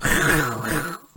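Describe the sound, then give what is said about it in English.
A person imitates a panther's roar with one loud, growling vocal burst lasting about a second, which drops off abruptly into near silence. “Let me hear your panther roar.”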